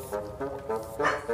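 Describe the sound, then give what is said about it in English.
A female dog named Truffles barks in a quick series of about five short, tonal yelps, evenly spaced and fairly loud, with no one talking over them. “Okay, well, now she's barking about something.”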